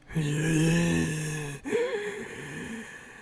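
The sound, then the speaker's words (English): A voice imitates ghoulish zombie breathing: a long, raspy, moaning exhale followed by a shorter, wavering groan, fairly loud, with no other sounds around it. “He goes to close the blinds when he hears ghoulish breathing coming from the corner behind him.”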